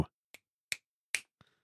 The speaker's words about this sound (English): I don't know if y'all could hear that, but I just did the finger snap.